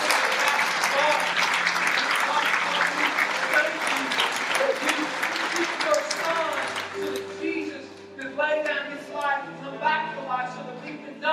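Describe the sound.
A crowd breaks into a loud, dense round of applause that holds steady for several seconds, then thins out as a voice begins speaking over the last scattered claps.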